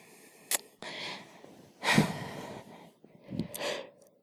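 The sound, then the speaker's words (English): A person yawns, with a few drawn-out, breathy exhalations and soft vocal sighs, each swelling and fading over about a second, and no words spoken. “So. Okay, so here's the thing about yawning.”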